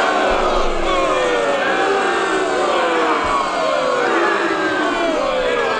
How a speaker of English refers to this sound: The most this boo button's ever been used. Man, I'm going to tell you, go ahead and push it again